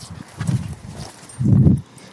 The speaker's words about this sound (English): There's a soft-shell turtle that I can see, and you can still hear my boots.